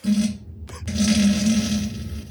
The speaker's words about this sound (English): It's the fart of the week.